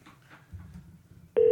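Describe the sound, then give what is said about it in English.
A quiet low rumble gives way to a loud, steady telephone tone that starts abruptly near the end and holds, as a phone call is placed and rings through. “Okay, we got another phone call to make here.”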